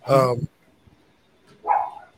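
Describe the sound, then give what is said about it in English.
Two loud dog barks, separated by a short pause of near silence; the first is sharp and harmonic-rich, the second slightly softer and more drawn out. “Shut up, doggies. Shut up.”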